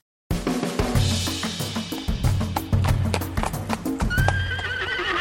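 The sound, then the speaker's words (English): A horse neighs while its hooves clip-clop in a steady rhythm, with a high whinny rising near the end. No one speaks. “And I will tell you all about the ballad of stuartgoldsmith.co.uk after this noise of a horse.”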